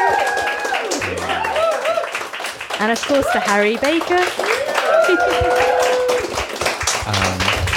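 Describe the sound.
Loud, sustained applause from an audience, a dense wash of many hands clapping throughout, while a voice speaks over it close to the microphone.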